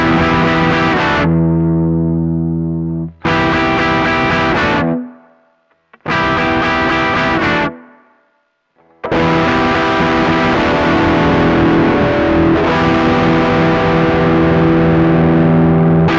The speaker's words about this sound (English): So the sound of this treble booster with the volume in different positions gives us so much options. So you've got lots of levels of crunch there.